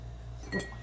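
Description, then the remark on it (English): A short, bright clink of a single ice cube dropping into a glass of Terry Bradshaw's bourbon, with a couple of quick taps close together over a low steady background hum. No one speaks. “I'll take a cuber. Can I get a cube?”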